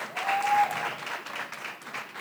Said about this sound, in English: Isn't that amazing? So they, clap it up.